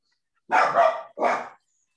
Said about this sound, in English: Wow, even your dog's pissed about that.